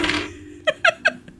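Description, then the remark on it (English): Dice rolling on a table and coming up snake eyes: a brief rattling scrape, then three sharp, bright clacks at an even pace and a faint final tick as they settle. “Is that snake eyes or an 11?”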